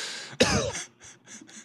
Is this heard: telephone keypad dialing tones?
no